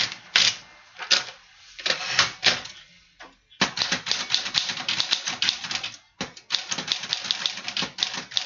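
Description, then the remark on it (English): Rapid clacking of keys on a Smith Corona portable typewriter, with no voices. The strikes come in quick bursts, pausing briefly before resuming at a steady, busy pace. “Kimmy, it is a portable typewriter. And for those who really care, a Smith Corona portable typewriter.”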